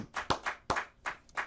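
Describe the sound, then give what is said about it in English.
A short burst of hand clapping from a few people welcoming a guest, sharp claps overlapping in a loose, uneven rhythm, with no talking. “Clap yes it up sir, for him.”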